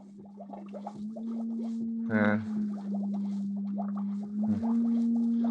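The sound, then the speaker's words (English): An encephalograph machine reading alpha waves from a human brain hums steadily at a low pitch, overlaid with warbling, bubbling electronic blips and a brief louder tonal burst partway through, without any talking. “Encephalograph.”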